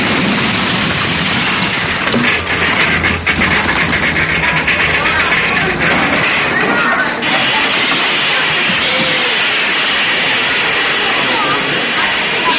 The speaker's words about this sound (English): I'll pull the cord up there, the emergency cord. That will put on the brakes and stop the train.